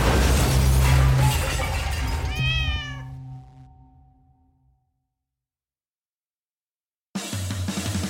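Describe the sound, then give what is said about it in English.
A single drawn-out cat meow rises out of a dense, noisy clatter, then the sound fades away into several seconds of silence before a new burst of noise begins. “In the meantime, here, kitty, kitty. Here, kitty!”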